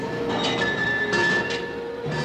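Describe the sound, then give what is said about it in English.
Factory machinery runs in a steady, dense mechanical din, with a constant whine and a few high metallic tones above the roar. Loud and unbroken throughout, with no voices. “Progress is the sound of a motor, the hum of a turbine, the heartbeat of a factory,”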